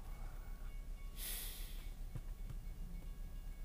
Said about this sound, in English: the fucking train's coming. I hope you get clipped, you son of a bitch. Yeah, now you gotta wait for the fucking train because you couldn't go. Now you gotta wait for this goddamn train to go because you couldn't go, you piece of shit.